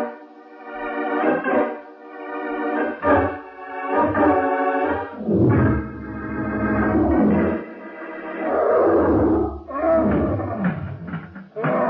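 An ape named Pongo roars and bellows in a cage in a string of loud, rough, harmonic bursts, rising and falling in pitch with short breaks between them, and no voices alongside.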